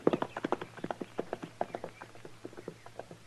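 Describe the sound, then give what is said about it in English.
Horse hooves clip-clop in a brisk, steady rhythm, a quick run of sharp knocks over a low background hum, with no voices. “I left my horse over the rise there”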